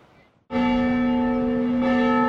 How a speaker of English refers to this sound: The bells have been ringing at the mission for more than two centuries.